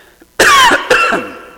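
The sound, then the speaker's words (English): Two sharp, loud coughs, a quick harsh burst followed by a second one that trails off, with no talking. “If this cough continues, I want you to see one thing he says.”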